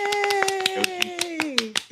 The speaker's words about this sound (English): Yay! Give you a clap.